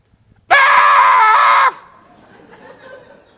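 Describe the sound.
A voice lets out a loud, sustained imitation of a scream lasting about a second, held steady and then cut off sharply, followed by faint background murmur.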